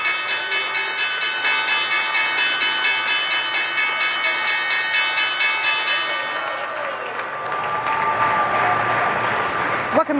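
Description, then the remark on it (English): The loud, continuous electric opening bell of the New York Stock Exchange rings steadily for several seconds, opening the fourth trading session of the week, then cuts off as a burst of applause and crowd noise swells and carries on to the end. “That was the opening bell for the fourth session this week.”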